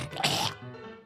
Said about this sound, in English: Hold on. Let me clear my throat.